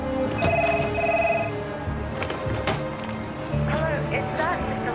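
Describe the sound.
A push-button desk telephone rings in short electronic warbling bursts, moderately loud, over many overlapping voices and light office clatter.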